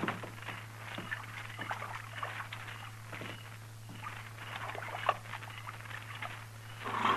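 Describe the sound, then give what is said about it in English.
A buckskin horse drinks water, with irregular wet slurps and splashes over a steady low hum. The lapping sounds rise and fade unevenly, and no one speaks. “This cussed buckskin can drink more water than a Texas mule.”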